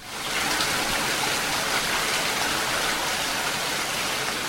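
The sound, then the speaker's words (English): Heavy rain pours down outside in a steady, dense hiss, constant and fairly loud throughout with no breaks or voices. “Even though it's pouring outside, your dog will give you those eyes that plead, "Please, let's just do something together."”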